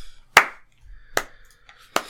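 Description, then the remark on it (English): Three loud, sharp hand claps spaced evenly apart in a slow, deliberate rhythm, each with a brief ringing decay, with no talking. “What's this clap for?”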